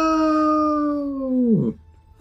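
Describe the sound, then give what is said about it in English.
A cat howls in one long, loud, steady yowl with a rich, buzzing tone, then the pitch sags and slides downward before cutting off abruptly. No one speaks. “That's the actor cat having had enough.”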